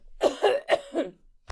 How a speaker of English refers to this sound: Okay, hold on. I need to cough.